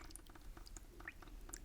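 Soft, irregular splashes and patters of water trickling and dripping, fairly quiet, with small bright plinks scattered throughout and no voices.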